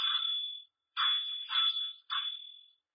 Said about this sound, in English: That is also why you had better ring the doorbell.